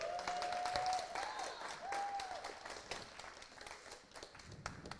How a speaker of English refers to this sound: So why don't you come up, give him a cheer.